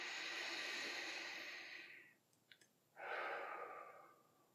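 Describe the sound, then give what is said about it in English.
Two slow, airy breaths in through the nose: a long, steady draw of air fading out, a brief pause, then a second softer breath. No talking. “Breathe in your nose and out your mouth or your nose, and you start to feel that peace come on you.”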